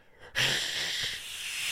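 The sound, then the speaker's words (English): A person imitates a crocodile's hiss with one long, breathy, airy rush of noise that starts abruptly and holds steady for over a second, with no talking. “As we say at the end of every episode of Paleobites, what does a crocodile do? Like, sometimes they hiss.”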